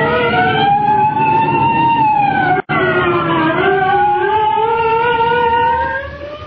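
State troopers' police car sirens in a Superman radio drama wail loudly and continuously, several overlapping tones rising and falling in pitch, with one brief cut partway through and a slight fade at the very end; no one speaks.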